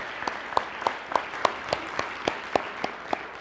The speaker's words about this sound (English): Let's just give them a round of applause and thank them for their ministry.